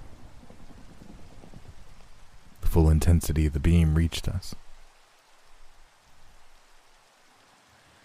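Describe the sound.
Steady rain hisses throughout, with a low rumble of thunder underneath; partway through, a voice speaks briefly over the downpour before the rain continues alone, a bit softer.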